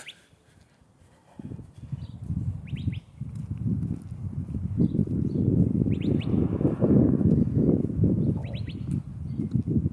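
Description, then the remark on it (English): Birds chirp outdoors in a few short, scattered bursts, fairly faint, over a steady low rumble of wind-like outdoor noise that swells after the first second. “I can't hear it, but birds and dogs are not cats.”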